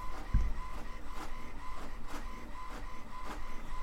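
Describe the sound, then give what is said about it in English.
A document printer runs steadily, finally printing a document sent earlier, with a mechanical whir and regular rhythmic pulses as pages feed through, moderately loud, no voices present. “And I think this is the document that I tried printing before is finally printing.”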